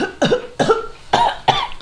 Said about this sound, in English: a plume of yellowish-greenish pollen busts out of it, about in its 5-foot diameter around it. You start coughing.